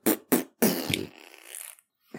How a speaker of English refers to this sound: Best fart on the radio.